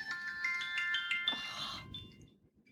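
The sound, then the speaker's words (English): A phone ringtone plays a short, quick melody of bright electronic tones for under two seconds, fairly quiet, then cuts off, leaving faint background hiss. “Sorry, my phone.”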